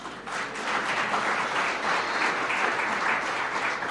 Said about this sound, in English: Can you clap your hands for those at the back?